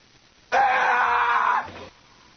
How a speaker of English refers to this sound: Now you're seeing a person dragged off a plane that was overbooked, and you have to start saying to yourself, is he screaming Santa?